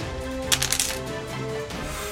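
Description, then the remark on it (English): A red and white twenty-sided die (d20) is rolled for damage in a tabletop game, clattering across the table in a quick burst of sharp clicks that settle within a fraction of a second, leaving a quiet hum behind. “All right, here comes the blood splatter. Dice for damage.”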